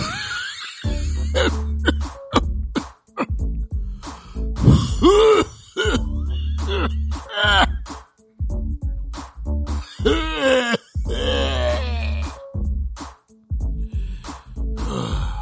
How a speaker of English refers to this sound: My fault, guy. Yo, I just got this back cough, man.